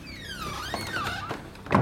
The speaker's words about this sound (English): I close the door, debating whether or not I really need to add photos of the dining room to add to my review.